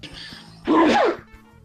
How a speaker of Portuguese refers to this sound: Saúde aí que tá espirrando. Ah, sou eu. Desculpa aí.